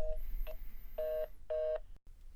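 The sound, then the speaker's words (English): Telephone keypad tones beep in a short sequence as a call is dialed: a brief tone, then two longer, steady electronic beeps spaced evenly apart, clear with no talking. “Manager Nick, calling him right now on our phone.”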